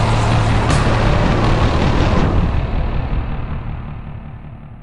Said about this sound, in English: the Joker walks away, gets back into the armored car with his ghoulish thugs and drives off